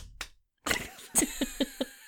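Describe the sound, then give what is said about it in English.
Sharp hand claps done over the head: one isolated smack, a brief flurry, then four fairly evenly spaced claps in a quick rhythm, moderately loud with no talking. “Like the hand clap you did over your head.”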